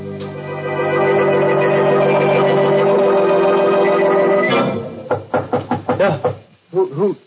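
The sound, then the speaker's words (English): A steady, sustained musical tone gives way to a firm series of about six evenly spaced knocks on an alley door. A voice briefly follows. “That's the alley door. Somebody's there.”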